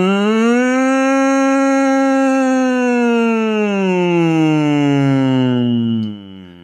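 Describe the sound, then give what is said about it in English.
A single voice holds a long, loud, siren-like wail, sustaining a steady pitch before sliding slowly downward, mimicking an air raid siren; it fades out at the end. “Well, then that's getting more towards that sort of air raid siren kind of.”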